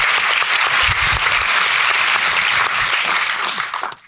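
Sustained, dense applause from an audience at the New York Historical Society, a steady wash of many hands clapping at full volume for about four seconds before fading out quickly at the end.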